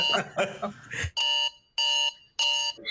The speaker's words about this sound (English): Is it really annoying? Like a freaking wake up alarm?